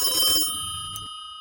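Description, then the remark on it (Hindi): A telephone rings with a bright, steady electronic trill, close and fairly loud, then the tone lingers faintly for a moment after the ring cuts off. “तभी मेरे पास रखा हुआ फोन बजने लगा।”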